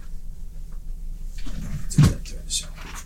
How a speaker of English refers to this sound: No arms on this chair? Oh. No, they come down. Oh, now we're talking.